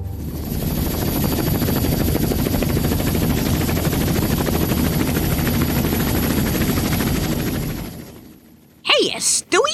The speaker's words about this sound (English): And here's the notes I promised you, you know, on how to fly this copter. And I started her up for you.